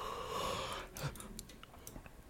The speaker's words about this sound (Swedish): Hur gäspar jag istället? Fan, hostar jag inte eller rapar jag inte så gäspar jag istället.